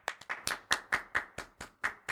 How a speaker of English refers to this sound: No, it's a clap track. This is a banger. Listen to this one. It's a clap track. Yeah. Clap track.